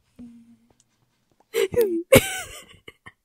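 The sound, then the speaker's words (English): Someone imitates the tiny snore they make in their sleep: a faint low hum, then two short snorting, throaty bursts in quick succession, trailing off into small breathy sounds. “And sometimes I do these, like, this tiny little, like, snore.”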